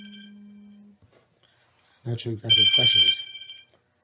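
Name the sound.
phone ringing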